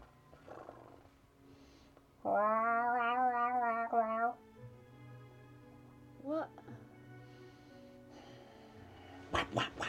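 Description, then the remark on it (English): A cat lets out a long, wavering meow lasting about two seconds, followed later by a shorter, quieter one, with faint voices and background noise around them. “Look at my cat.”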